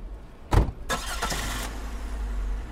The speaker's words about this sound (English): Fred at the wheel, Noah riding shotgun, Lyle in the back, the van rumbles along.